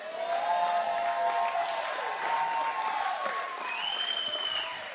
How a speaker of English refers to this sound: Give them a clap again.